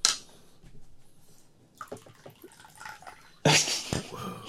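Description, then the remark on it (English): Tea pours into a cup, a brief trickle followed by light clinks and taps, then a louder, steady splashing stream that fills the last second; no one speaks. A person is pouring themselves another cup of tea. “I'm going to pour myself another cup because it's so delicious.”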